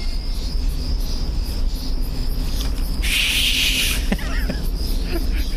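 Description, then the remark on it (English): In a film, the character Caleb, fingers in his mouth, attempts a finger whistle for Thomasin while searching the woods; it comes out as a single breathy, airy hiss lasting about a second, set against a steady high chirring of crickets and low background rumble. “they're trying to find each other in the woods after they're separated, and Caleb is trying to whistle for Thomason. Yeah. And the subtitle for it is attempted whistling.”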